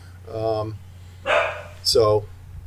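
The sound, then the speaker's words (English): A female dog barks three times in quick succession, loud, each bark short and sharp over a low steady background hum. “I have no idea what she's barking at, but I don't know.”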